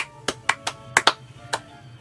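A handful of sharp, scattered hand claps at an uneven pace, about six or seven over two seconds, brief applause with no voices.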